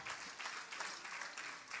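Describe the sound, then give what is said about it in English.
An audience at Hatchbend Apostolic Church claps their hands together to thank God for his hand of mercy, a dense, steady patter of many overlapping claps at a fairly even loudness with no voices standing out. “Come on, let's clap our hands one more time and thank him for his hand of mercy.”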